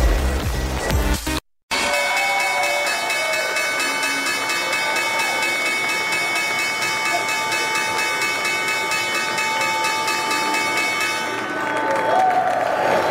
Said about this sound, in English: First Move live from the New York Stock Exchange. That was the opening bell this morning